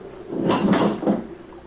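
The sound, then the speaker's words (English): A bedroom door is pulled open onto a corridor on a stormy night, a short run of wooden creaks and knocks lasting about a second, with no one talking. “As I opened my door, I heard a distant whistle.”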